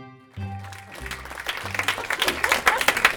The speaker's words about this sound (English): Oh, that was a bit of fun. It's fun to clap and make noise. It's as true today as it was in your childhood.